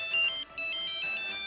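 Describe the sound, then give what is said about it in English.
A new, latest-model cell phone plays a bright electronic ringtone melody of stacked tones in quick repeating phrases, clear with no voices over it. “Cell phones are so old.”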